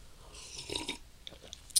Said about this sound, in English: I'm going to take a sip of coffee before I read this part.